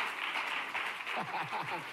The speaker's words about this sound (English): Come on, put your hands together for the Lord. Oh, your clapping is sick.